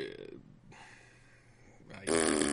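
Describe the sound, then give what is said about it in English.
A person blows a wet, buzzing raspberry with their mouth to imitate a fart, starting low and rough, then swelling into a louder, brighter sputter at the end. “Fart noise.”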